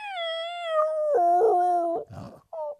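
A small dog named Mr. Wubbles lets out a long, wavering howl that slides downward, then breaks into shorter whimpers and a brief final whine, during the filming of a Yappy's Dog Treats commercial. Fairly loud, with no talking.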